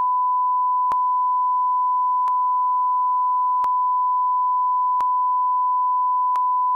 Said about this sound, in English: I think I'm just gonna beep that. You can't beep me. You can't beep me. I can do whatever I want. I'm the editor.